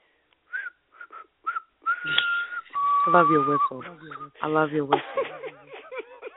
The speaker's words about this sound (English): I love your whistle.